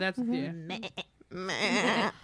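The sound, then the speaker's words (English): A person imitates an animal bleat with a wavering, nasal "baa" sound, two drawn-out bleats with short choppy bits between, fairly loud. “No, that makes me think of, like, the noise that giraffes make. They bleat.”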